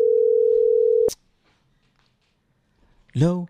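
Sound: telephone dial tone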